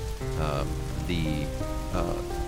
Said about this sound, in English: Rain that is falling on top of you begins to hit your armor and your arms and your kind of your body with a little less force. It begins to just kind of gently fall on your armor